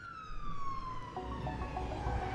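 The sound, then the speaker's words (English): An ambulance siren wails with a long falling tone, then shifts into a rapid stepped pattern, loud over a low rumbling engine, with no one speaking. “Okay, now that the ambulance is here, we have to talk about COVID-19.”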